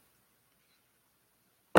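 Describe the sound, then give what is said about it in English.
A phone drops onto a hard surface with one abrupt, loud thump that cuts off sharply. Almost complete silence comes before it, with no voices. “Are you stomping something? Because you're mad. I just heard a stomp. No, I dropped my phone.”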